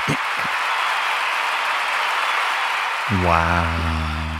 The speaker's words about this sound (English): Round of applause. Standing ovation.